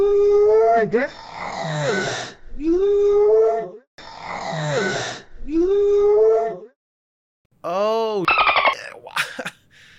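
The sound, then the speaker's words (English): A voice imitates whale calls with long, wavering moans and swooping wails, repeated in two similar bursts, then a short run of rising and falling squeals, loud. “I didn't even realize I could totally understand your whale speak.”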